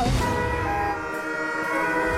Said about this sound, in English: Your honking wasn't aggressive enough. That's how you've got to do it, yes.